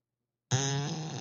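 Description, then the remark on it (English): After a short silence, an Alexa smart speaker plays a fart sound effect on voice command: an abrupt, buzzy, wet and squeaky blast that holds steady for under a second, with no voices. “Alexa, fart.”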